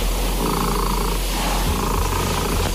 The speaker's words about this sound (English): This is an official attempt for the loudest purr by a domestic cat.